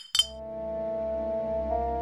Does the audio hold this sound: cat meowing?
no